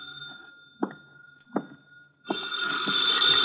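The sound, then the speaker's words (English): A telephone bell rings loudly and steadily through the final second in an office, after a quiet stretch with a faint sustained tone and two soft knocks. “I sat down to wait for him, and the phone started ringing.”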